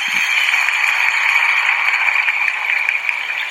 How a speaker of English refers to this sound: I'm sorry. I have to do another applause for you just because I know everybody's clapping wherever they are listening right now.